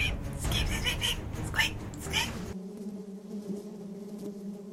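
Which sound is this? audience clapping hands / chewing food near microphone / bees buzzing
bees buzzing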